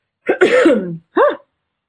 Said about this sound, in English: my cough is happening again.